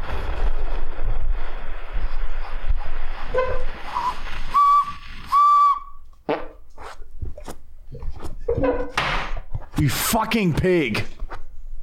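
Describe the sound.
A recorder squeaks out two or three brief, thin whistling notes, blown by a fart, amid rustling and windy noise, with people talking and exclaiming afterward.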